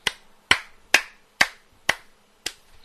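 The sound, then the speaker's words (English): Six sharp, isolated handclaps ring out in a slow, slightly uneven rhythm, each crisp with a brief decaying tail, and no voices; an applause sound effect played for Ted Cruz. “I think I have an applause.”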